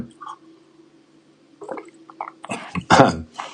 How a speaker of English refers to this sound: I'm going to have a little sip of coffee here.